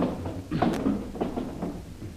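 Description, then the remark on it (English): Dresser drawers are pulled out one after another to make a room look as if a cyclone had hit it, a series of fairly quiet wooden scrapes and knocks spread over a couple of seconds, with no voices. “Pull out the drawers in that dresser there.”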